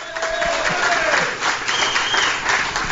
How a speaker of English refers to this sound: Let's everybody give a round of applause